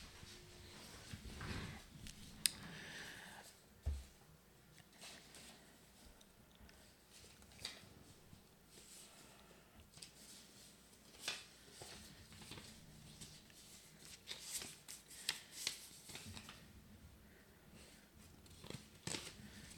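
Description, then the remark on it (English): Dry, crinkly rustling and scraping of paper, fairly quiet, with irregular sharp crackles and brief snips scattered throughout and no talking. “Hope the paper's rasping's good audio.”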